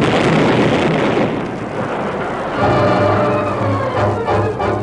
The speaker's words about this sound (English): An instant later, there was a blinding flash in the pass. Hard upon it came a breathtaking rush of air and the jarring thunder of a terrific explosion.